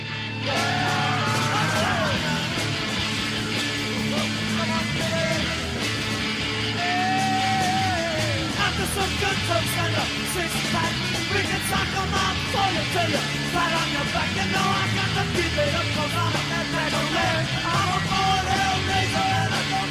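A loud, dense live rock song with distorted guitars, pounding drums and a raw, shouted lead vocal that wails and bends over the steady wall of sound.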